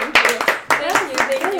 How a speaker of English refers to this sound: Round of claps.